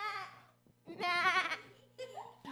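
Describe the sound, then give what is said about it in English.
A sheep bleats three times in quick succession, each call a quavering, nasal cry, fairly loud, with a faint steady hum underneath. “Where are you going? Sheep.”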